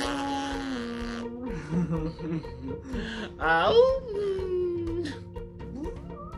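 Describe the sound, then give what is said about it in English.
A voice imitates a beluga whale call with warbling, squeaky tones that slide up and down in pitch, including a sharp rising whistle midway, over several seconds of continuous moaning sounds. “Hey, what does a beluga whale sound like?”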